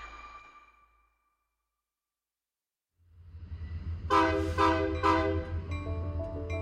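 A train rumbles in after a brief silence, its low engine drone building as a loud, multi-tone horn blasts several times in quick succession, without any voices.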